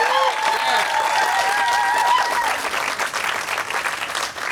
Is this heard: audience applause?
yes